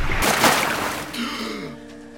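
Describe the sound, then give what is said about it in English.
A loud, ragged gasp for air after nearly drowning, as a person sits bolt upright in shallow water, then trails into a strained, voiced exhale, with a faint watery wash underneath. “The soldiers drop me, and I sit bolt upright in the shallows, gasping for air.”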